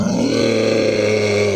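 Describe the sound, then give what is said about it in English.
A monster with a four-mandible mouth roars, shaking the room: a deep, guttural roar held loud and steady for over a second, its rumbling low growl layered with harsh, buzzing overtones. No one speaks. “He turns toward all of you, kind of crouches down, and his 4 mandible mouth just opens up, and he just roars.”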